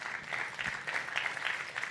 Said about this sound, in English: Stacey, if you're watching this, they all clapped. So I got a point for that one.